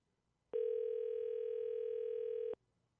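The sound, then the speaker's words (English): A single steady electronic ring tone on a phone line, from a call that goes unanswered and is pushed to voicemail, lasts about two seconds, clear and fairly loud, then stops, with near silence around it and no voices. “He ain't gonna answer. He's probably in class, huh?”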